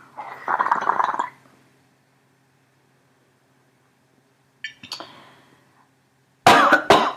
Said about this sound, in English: Oh, that cough came out of nowhere.